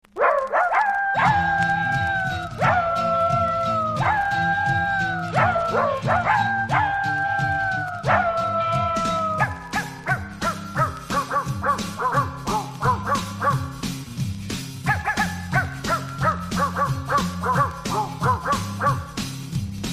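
Dogs bark and yap in a rough melody over a steady instrumental backing of a pop song, with sustained howling tones early on giving way to choppy, rhythmic yips.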